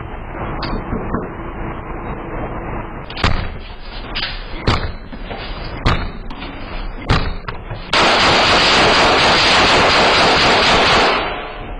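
A door is kicked repeatedly, about six heavy, irregular thuds and slams landing close by, followed by a loud, sustained rush of harsh noise for several seconds. No one speaks.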